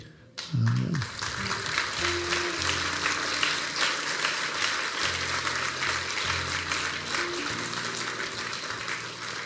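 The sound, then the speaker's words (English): A church audience bursts into sustained applause for a young man who has received an appointment to the Coast Guard Academy, dense clapping rising quickly and holding steady for several seconds with a few low murmurs and a brief whoop near the start. “Don't applaud that.”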